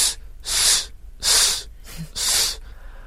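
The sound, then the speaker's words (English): A voice imitates a perfume spray, like a woman spraying perfume on herself on a train to Edinburgh: three loud, breathy hissing bursts, each about half a second long, evenly spaced with short pauses between them and no talking. “I was on the train going up to Edinburgh, and about an hour before we reached Edinburgh, a lady sitting just behind and opposite me started spraying perfume on herself.”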